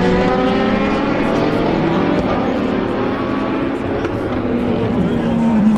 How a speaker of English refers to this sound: Listen for the spiker, which is quite far back. Corvettes. The Corvettes really rumble, don't they